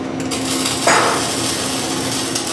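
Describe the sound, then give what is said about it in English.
A busy school metal shop where students measure, cut, hammer and grind small metal plates to prepare for a basic weld: a steady wash of tool noise and a low machine hum, broken by a single sharp metallic strike partway through. No one speaks. “Within a few minutes, the shop is buzzing as each student measures, cuts, hammers, and grinds small plates of metal to prepare for a basic weld.”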